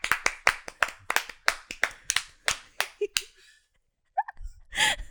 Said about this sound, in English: Yeah, standing up, round of applause, standing ovation.